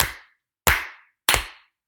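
Two people clap their hands: three sharp claps, evenly spaced about two thirds of a second apart, each a loud crisp smack with a brief ringing tail. No voices accompany them.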